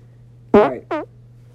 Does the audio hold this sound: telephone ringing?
no